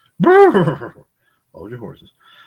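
A horse whinnies loudly in one shrill, wavering burst, then a shorter, lower and softer whinny follows after a brief pause.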